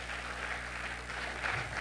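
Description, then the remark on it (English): A large church audience claps together as a praise offering during worship, in a dense, steady wash of applause, with no individual claps standing out and no voices heard over it. “Let's praise him with a clap offering.”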